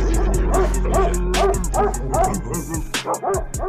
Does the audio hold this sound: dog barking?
yes